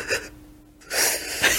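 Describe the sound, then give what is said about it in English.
A voice imitates trying to hold one's breath while running out of oxygen: a short airy inhale, a near-silent pause, then a long, loud rushing gasp of released breath, with no words. “when you're breathing so light as a kid, you're like trying to hold your breath but you're running out of oxygen, so you gotta do the yeah.”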